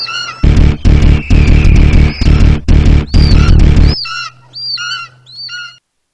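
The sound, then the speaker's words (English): In a film trailer about attacking birds, shrill bird screeches ring out over a series of loud, heavy pulsing bursts, then a few thinner, isolated shrieks trail off quietly at the end. “Why would birds do something like that? Why would they just attack?”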